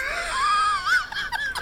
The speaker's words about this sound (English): There's the kettle.